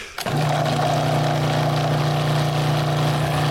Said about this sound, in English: And finally, the blender.